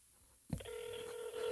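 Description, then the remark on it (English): A telephone ringback tone from a call to Dick's Fresh Market starts abruptly after a quiet moment and holds as a steady electronic hum-like tone, fairly clear, as if heard through a phone line. “It's ringing. We're gonna figure out how much ham costs.”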